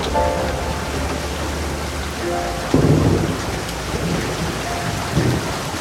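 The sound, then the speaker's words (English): Heavy rain pours steadily in autumn as the leaves turn orange, a dense hiss with low rumbling underneath and a brief louder surge partway through. No one speaks. “The rain comes heavy as the leaves turn orange.”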